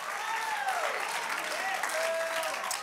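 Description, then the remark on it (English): An audience at an apostolic Pentecostal church service claps hands in a dense, steady wash of applause, with faint voices and a few rising and falling vocal tones weaving through the clapping. “But I need a group of individuals that come to lift your hands, that come to lift your voice, that's not afraid to dance, that's not ashamed to shout, that will clap your hands.”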